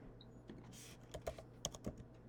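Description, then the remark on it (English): Quick, irregular keyboard clicks, a handful of sharp key taps, with a brief soft whoosh early on and no voices, as someone types a search for the name of the Michigan athletic director. “I literally got it before I even finished typing it.”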